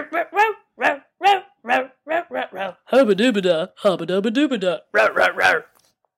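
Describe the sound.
A person's voice imitates the dog in a TV ad, with a string of short, loud yaps, then a longer whining stretch, and a final quick burst of barks.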